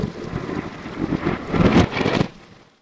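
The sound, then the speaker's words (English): Thunder played in reverse: a low, rumbling roar swells steadily louder over a couple of seconds, peaks in a harsh crack, then cuts off abruptly into silence. “Since it's a backward storm, like the thunder rumbles in reverse, so like we hear like the building of it and then the clap.”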